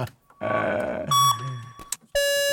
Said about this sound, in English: Let's do the Theremin. See how fast I can make a Theremin.